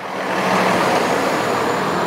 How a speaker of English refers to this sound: On an average day, roughly 3,500 semi-trucks cross the border at Otay Mesa. They are the backbone of California's economy, bringing in goods from south of the border. But they are also a major contributor to pollution.